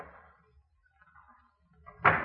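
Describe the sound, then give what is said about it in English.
A back door opens with faint, soft rustling and creaking as someone goes out, then shuts with a single loud thud near the end. “I'll go out my back door.”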